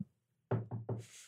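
Three firm knocks on a door, evenly spaced, followed by a soft hiss of background noise. No one speaks.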